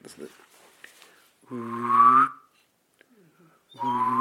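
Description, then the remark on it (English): A mallard duck call is blown in two loud, reedy, buzzy quacks. The first is drawn out and rises slightly in pitch; the second starts after a short pause and is cut off. “Name this duck call right here.”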